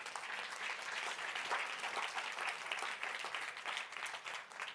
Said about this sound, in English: Come on, somebody clap their hands.